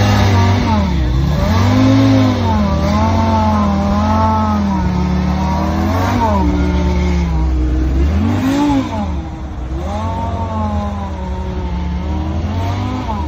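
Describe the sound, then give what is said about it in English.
A loud supercharged 2-liter four-cylinder car engine revs hard and repeatedly, its pitch sweeping up and down through gear changes with a rich harmonic whine, continuous for the whole stretch. “It's got to be the supercharger because the original 037 sounded similar”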